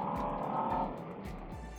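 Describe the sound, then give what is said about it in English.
A Scout Bobber motorcycle, called Zaya, rides along the road, its engine droning steadily with a low rumbling pulse, wrapped in continuous wind and road noise. No one speaks. “So we're back on the Scout Bobber.”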